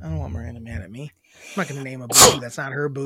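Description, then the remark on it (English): A single sharp, loud sneeze bursts out in the middle of conversation, with people talking just before and right after it. “Bless you. Thank you.”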